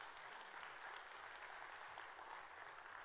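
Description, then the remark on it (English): A crowd applauds its volunteers steadily, a dense wash of clapping hands that stays at an even, fairly loud level for the whole stretch without any voices rising above it. “Let's give a round of applause, all our volunteers.”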